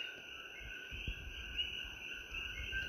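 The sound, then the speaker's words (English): A steady, shimmering chorus of frogs trills continuously at a low, even volume as night starts to fall, unbroken, with no voices present. “Night is starting to fall, and you hear a chorus of frogs.”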